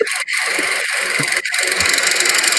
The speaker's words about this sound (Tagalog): Correct answer is a lawn mower.